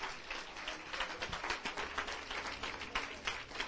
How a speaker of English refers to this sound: Let's give him a tremendous hand of praise this morning. Come on, let's give God a tremendous hand clap of praise. All over the church, we should be clapping, thanking him.